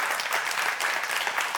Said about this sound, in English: I also want to take a moment and thank all the ladies who stayed after church last Sunday and decorated all the whole building for Christmas. Can you give them a round of applause as well?